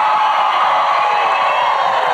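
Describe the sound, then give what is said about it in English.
A large live audience at a The One Thing for Teams session cheers and whoops loudly, a dense, sustained roar of voices with scattered shouts filling the space without a break. “He wanted to make sure that we were louder than Gary's crowd.”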